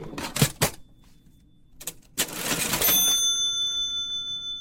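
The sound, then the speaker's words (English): An old 1944 mechanical cash register that came out of a liquor store clunks a few times as its keys are pressed, then the drawer mechanism whirs and a bright bell rings out, its tone lingering and slowly fading. No one speaks. “It's got a good bell, doesn't it?”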